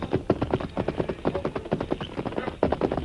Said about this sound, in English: Finally, he heard hoofbeats approaching along the trail.